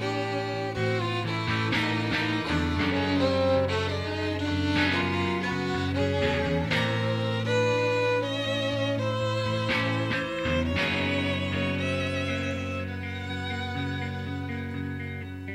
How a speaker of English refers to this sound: And the violin arrangement near the end, I get that maybe they were trying to make it sound dissonant on purpose, but it's... We're going to let you listen to it.